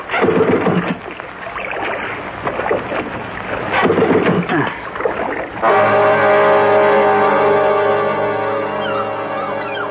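Water sloshes around a drifting motorboat while the stalled outboard sputters through a few rough restart attempts, then catches and settles into a loud, steady engine drone close by.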